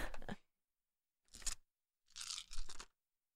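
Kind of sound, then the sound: household object, rummaging through dice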